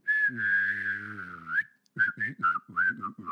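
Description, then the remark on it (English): A person whistles and hums at the same time to imitate the beeps of the robot R2-D2: one long, wavering sustained tone, then a quick series of short chirpy bursts, all fairly loud with no talking. “It's my sad R2-D2. Okay, anyway, let's stop. Enough with the robot noises.”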